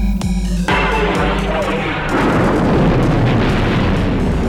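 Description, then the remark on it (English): A rising tonal whine gives way to a massive, roaring explosion as the planet Alderaan is blown apart by a battle station's superweapon blast. It swells louder after a couple of seconds and rumbles on without a break. “have chosen to test this station's destructive power on your home planet of Orden.”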